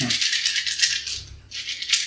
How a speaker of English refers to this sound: Where are my fun dice? Are those mine? These are some of the ones that I made for you. That, ASMR of dice sound. It's a good sound.